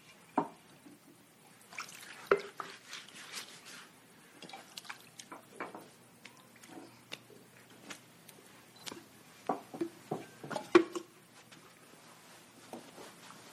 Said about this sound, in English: Then he poured some water into a wash basin and began to wash the disciples' feet and dry them with the towel around his waist.